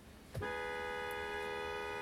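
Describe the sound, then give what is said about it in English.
A car horn gives a quick blip, then a long, steady honk that holds to the end, loud over low background rumble. “The last and most serious of all car honks is the one short followed by one long.”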